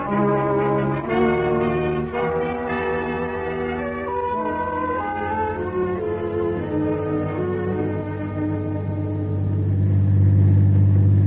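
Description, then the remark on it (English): A black Ford sedan's engine revs and drones steadily, its pitch sliding up and down as it drives, with a deep rumble swelling louder toward the end. “Get out an alarm right away on this car. Black Ford Sedan.”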